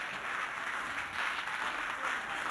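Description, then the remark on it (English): An audience claps their hands together to thank God during a worship service, producing a dense, steady wash of crowd applause that stays at an even level throughout, with no voices standing out. “Come on, clap your hands and thank God.”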